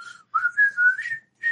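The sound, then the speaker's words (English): A person whistles a short, bouncy tune, the whistle song done at a campground, with a few connected phrases, a brief pause, then one last note. The whistling is clear and unaccompanied. “And they go there, do they do that whistle song?”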